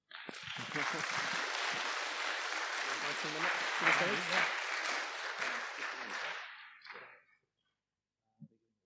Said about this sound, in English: Want to come on up? Round of applause.